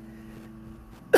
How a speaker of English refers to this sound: Excuse me. It's not COVID. Now, every time you cough, you have to, like, remind people, no, I'm not sick. I promise you it's not the virus.